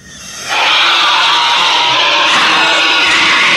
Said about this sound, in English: That's the scream. It chills. It's so creepy.